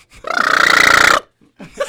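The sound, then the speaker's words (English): A person makes a loud, raspy, croaking vocal call lasting about a second, buzzing and pulsing like a burp and imitating a duck's mating call. A short burst of voice follows after a pause. “Sounded like a mating kinda call. Like kind of like a duck, almost.”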